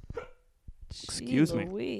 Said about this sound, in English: Excuse me, hiccups.